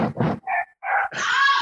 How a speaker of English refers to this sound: Which makes what sounds like a knocking sound, which makes Emerald's dog freak out.